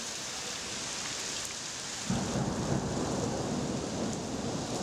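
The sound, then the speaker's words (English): Steady rain hisses throughout in Prague, and about halfway through a deep rumble of thunder rolls in under it, thickening the storm sound until the end. No one speaks. “It's a Thursday, and it's raining in Prague.”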